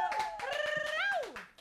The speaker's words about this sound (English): A big round of applause for Gretel Colleen.